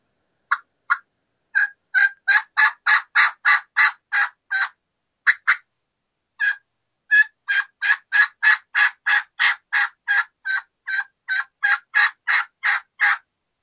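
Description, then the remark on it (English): A turkey hen gives transition yelps in long, steady runs of raspy notes, each with a little front end and a bigger, raspier back end, briefly pausing midway before continuing at a quick, even rhythm. The calls are clear, with no talking. “she basically starts with a little front end, and then she transitions quickly into that back end, usually a bigger, more raspy back end”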